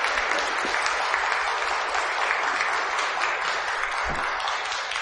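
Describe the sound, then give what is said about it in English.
A church audience claps steadily for several seconds during a worship service, thanking performers for their gift, a dense, even wash of applause from many hands at a consistent moderate loudness with no talking. “think it appropriate for us to give them a Christian round of applause and thanks for their gift to us this morning.”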